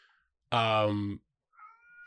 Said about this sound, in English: We have a cat whining at us.